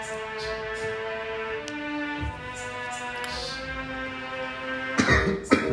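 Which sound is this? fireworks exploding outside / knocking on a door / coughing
coughing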